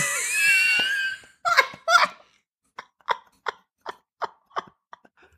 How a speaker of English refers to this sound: They're actually moving the microphone closer and closer to their mouth so we can hear the chewing.